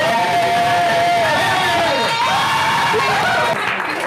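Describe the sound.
A large crowd gives a preacher an "Abba welcome", cheering and shouting in a loud, sustained wash of voices with rising whoops and excited calls layered over dense babble.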